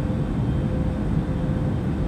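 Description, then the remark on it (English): A steady, droning airplane engine hum fills the moment, a constant low rumble with no breaks or changes, like being inside a cabin in flight. “I am on an airplane, and I am about to fly the world.”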